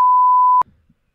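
A single steady, mid-pitched electronic beep sounds loudly for just over half a second, the tone that signals a phone call has reached voicemail, then cuts off into faint low rustling.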